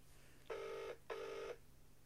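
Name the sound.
phone call ringing unanswered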